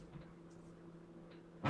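A quiet hum gives way to a sudden, loud door slam near the end, a single heavy thud with no one speaking.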